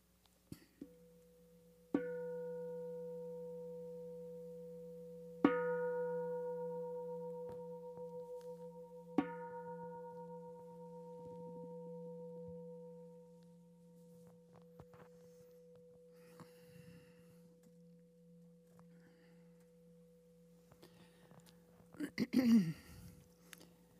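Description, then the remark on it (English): Three meditation bell strikes sound a few seconds apart, each a bright onset that settles into a long, steady ringing tone and fades slowly. A short noisy burst follows near the end. “We'll end with three bells.”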